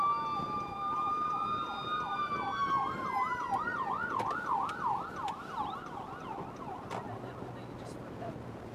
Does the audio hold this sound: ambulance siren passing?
yes